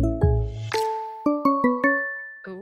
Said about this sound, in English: But you know what time it is right now? Because I'm hearing some chimes.